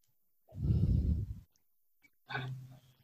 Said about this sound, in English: Especially with that heavy breathing. Thanks for that. Love it.